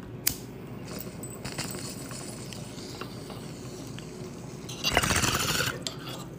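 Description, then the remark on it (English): Continuous gurgling of water bubbling through a Mav glass bong with a slightly clogged bowl as someone takes a hit, with a few sharp clinks early on and a louder, harsher surge of bubbling toward the end. “Let's take a fucking bong rip.”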